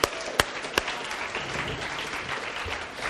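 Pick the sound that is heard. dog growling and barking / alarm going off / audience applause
audience applause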